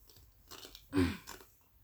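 A snack is crunched with a few crisp, crackly bites; the middle one is loudest and fullest, and softer chewing crackles follow. No voices are heard.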